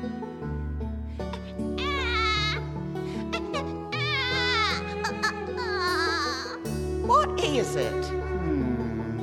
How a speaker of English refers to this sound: Wait. Is that a baby crying? Sounds like it. Oh my gosh, we should go help it.